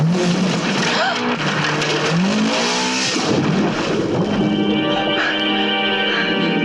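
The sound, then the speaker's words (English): A Lotus Esprit sports car engine revs hard in a Bond movie escape scene, the car later turning into a submarine; its pitch climbs in repeated surges as it accelerates, loud, with tires briefly squealing amid a busy, dense background and indistinct voices. “So one of my favorite scenes in the movie is when Bond escapes in the Lotus Esprit that turns into a submarine.”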